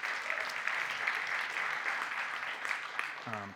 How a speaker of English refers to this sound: And we feel like we're supposed to pray into the starting of some youth stuff, not just middle school, but high school too, at our church, which is, I think we should clap for that maybe. It's cool.